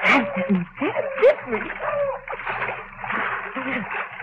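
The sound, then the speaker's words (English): Wet splashing footsteps slosh through water and mud in a steady run as a man fleeing tracking dogs walks in the water, with a voice speaking over the churning noise. “Walk in the water. The dogs won't find me then.”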